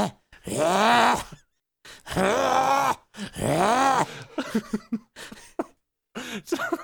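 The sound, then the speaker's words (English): A person vocally imitates a cat from a film hacking up a fur ball and throwing up on a woman: three long, strained, groaning heaves, then a run of short, choppy retching hacks, loud and alone without speech. “Why didn't anybody make, like, a YouTube video where they just take that and then it's just the cat finishes just hacking it and just pukes on her and then they all just go away?”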